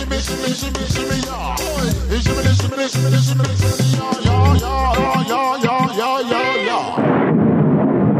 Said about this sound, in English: What an explosion to finish with.